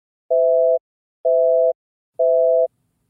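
A phone line's disconnect tone: three identical steady beeps, each about half a second long with equal gaps between them, loud and clear with nothing else in the background.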